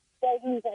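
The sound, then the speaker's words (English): A brief burst of a caller's muffled, narrow-band voice over a phone line, a few garbled syllables with a thin, boxy, distorted tone, loud, with no clear words. “You move your mouth a little bit away from the phone if you could.”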